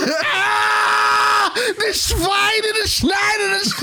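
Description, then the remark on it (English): A man's voice lets out a long, loud, strained scream, then breaks into several shorter shouted bursts, imitating the character Klaus screaming in German. “I just love whenever Klaus screams in German.”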